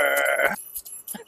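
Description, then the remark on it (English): A person imitates a horse's neigh with one buzzy, strongly voiced cry lasting about half a second. It breaks off abruptly, followed by brief faint breathy noises. “Nay. The horse.”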